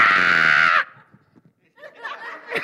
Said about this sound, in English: And that thing goes down like this and boom, projects him up, and the woman's screaming, "Ah! Ah!" right? And the guy is screaming louder than the girl.